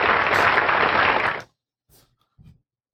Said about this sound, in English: Yes, Roadkill Bill, the inimitable, the flattened, the chewed up, torn up Roadkill Bill. Yes, Roadkill, you get some applause here.